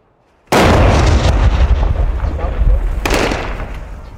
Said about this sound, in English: It's 7:30 in the morning in Kobani, and the explosions have just been non-stop all morning. It sounds like the Kurds are attacking the ISIS positions in the east of the city.